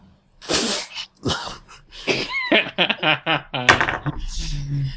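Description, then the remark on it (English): A voice imitates the Men in Black memory wiper, a sci-fi memory eraser effect: a string of breathy, hissing bursts, then a run of warbling, rising chirps and a final sharp burst fading to a low hum. “And for those of you listening, I just used the Men in Black memory wiper.”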